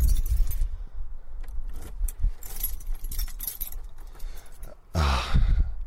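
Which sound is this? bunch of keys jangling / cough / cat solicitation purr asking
bunch of keys jangling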